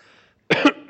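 A loud cough from a speaker who has just put in a cough drop bursts out after a brief quiet moment, a couple of harsh rough hacks in quick succession, with the start of another at the very end.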